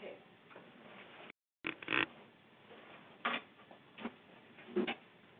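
A door is pushed shut: a cluster of sharp clacks and a thump from the latch, followed by a few softer knocks spaced about a second apart, over a low murmuring background.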